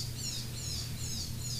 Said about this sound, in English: What is that? Is that a bird? Oh, sorry. I've got sound effects tonight. My windows are open. It's hot.